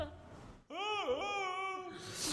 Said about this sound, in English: That's not a scream. That's more of a club seal limping back to the beach.